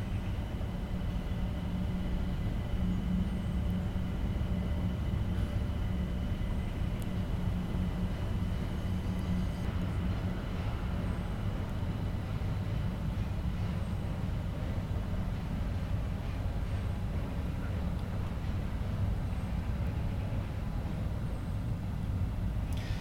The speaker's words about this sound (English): listening to the ambient sound of a park in the centre of London, where I'm astounded in the afternoon at the lack of birds.